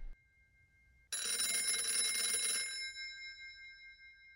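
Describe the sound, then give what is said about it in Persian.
A loud, bright telephone bell rings with an incoming call before noon, in one sustained burst lasting about a second and a half, then its metallic shimmer fades away. “امروز پیش از ظهر غزاله تلفن کرد.”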